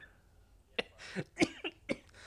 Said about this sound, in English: Sorry about the coughing, listeners. I am incredibly quite ill right now.